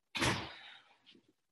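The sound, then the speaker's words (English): A front door bursts open with one loud, sudden bang whose broad rumble fades over about half a second, followed by a couple of faint, soft knocks. “Sorry, my front door is now flying open.”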